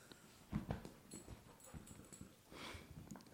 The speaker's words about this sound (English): So he's like jumping on me. Right? He's going to bark in a second. There he goes. He's just so excited. No biting. He's so excited.